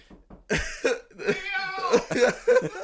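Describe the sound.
A person imitates a cat's meow, a loud, drawn-out, wavering vocal mew followed by a few shorter voiced bursts.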